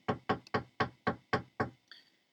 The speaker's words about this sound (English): And the Rav tried to come to him, knocked on his door.